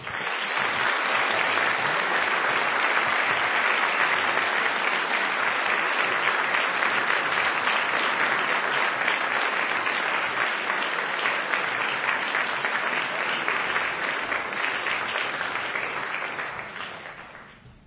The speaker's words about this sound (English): And I just would like to invite one more round of applause for Bob Rosenkranz for making this possible.